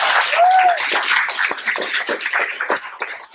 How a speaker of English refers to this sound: Can we just give this guy a round of applause real quick? Yes.